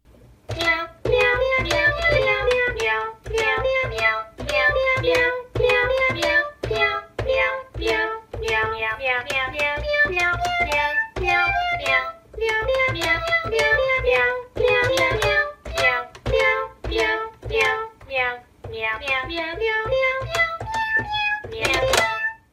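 A bouncy electronic keyboard tune played by Cat Keyboard, with a steady rhythm of staccato chords and a simple repeating melody. It plays loud throughout, with no voices.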